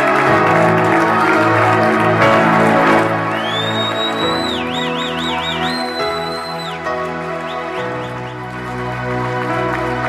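An audience claps steadily for their pastor on Pastor Appreciation Day, a dense wash of applause carried over loud, sustained music with held low chords and a high, gliding, warbling melody line.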